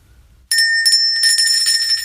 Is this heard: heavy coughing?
no